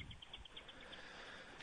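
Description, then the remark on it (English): Faint, rapid series of high, evenly spaced chirping notes from birds such as robins and cardinals, repeating steadily over a soft background hiss with no talking. “Hey, what birds you got going on in the background today? Oh, well, I've got robins, I've got cardinals, buddy.”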